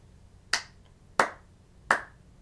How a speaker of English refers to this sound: Are you slow clapping? I have to give you, like, golf claps.